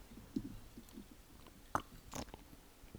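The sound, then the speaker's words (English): A close-up sip of a tart, bubbly fizzy drink: soft wet mouth clicks, then a couple of short, sharp slurping bursts near the microphone, with no talking. “Let me put it like this for the viewers for I'll have an ASMR sip in the speaker again.”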